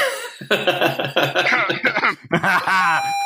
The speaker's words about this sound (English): Sorry, I started coughing.